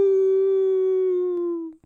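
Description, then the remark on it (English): A person imitates a wolf howl with one steady, sustained tone that holds loud and even for nearly two seconds before trailing off abruptly, with no talking over it. “give me your best wolf howl.”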